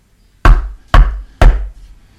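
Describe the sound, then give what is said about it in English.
Three loud, sharp knocks on a wooden table, evenly spaced about half a second apart, each with a short ringing decay, and no voices. “knocks on the table next to him 3 times.”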